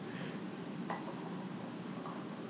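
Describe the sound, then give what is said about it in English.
Beer that looks like an IPA pours steadily into a glass, leaving a small head, a continuous fizzing, splashing rush with a couple of faint glassy clinks and no talking. “Nice little head nice on that pour.”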